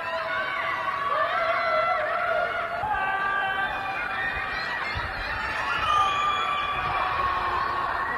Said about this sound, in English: And people filmed this very chilling dystopian scenario over the weekend at night where people went out to their windows in their apartment buildings and just wailed and screamed in agony.